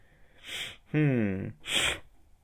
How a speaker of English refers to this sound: Oh yeah, sniffles. Oh, the sniffles.